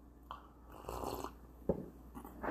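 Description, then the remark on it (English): A quiet slurping sip of coffee, a breathy inhaled drag followed by a small gulp or click, then a soft exhale-like rustle at the end. “After a quick sip of coffee.”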